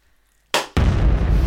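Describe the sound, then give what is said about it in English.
After a moment of quiet, a sharp hissing burst gives way to a loud explosion with a heavy, rumbling roar that carries on to the end. “That's another Jesus explosion Christ”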